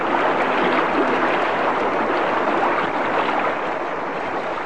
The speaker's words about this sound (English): Suddenly, as I drove my aching, oxygen-starved body past the now prone form of the depth controller, there came a sound of rending metal, a gush of water which was instantly replaced by a loud hissing.